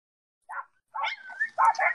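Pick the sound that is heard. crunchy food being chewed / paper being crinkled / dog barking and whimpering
dog barking and whimpering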